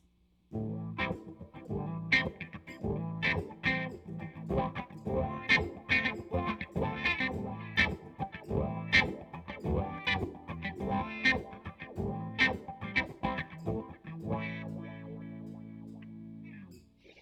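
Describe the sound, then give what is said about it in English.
An electric guitar played through a wah pedal, one of two wah pedals compared in an A/B test: choppy rhythmic strums and notes with sweeping, vocal-like filter swells, fairly loud and steady, ending on a sustained chord that rings out. “Which is the Best Wah Pedal?”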